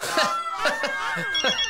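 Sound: phone ringing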